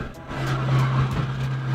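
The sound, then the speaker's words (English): A jet boat, up on plane, drones steadily and loudly as it speeds across shallow water over a mud flat toward a river mouth, a sustained low hum layered with a broad rushing wash of noise, with no voices. “brought the boat up on plane and ripped us through skinny water to the mouth of an unnamed river”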